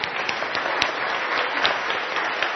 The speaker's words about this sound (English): So we have got a better ratio than the Church of England says is a good one for children to adults. Isn't that fantastic? I think we should deserve a round of applause.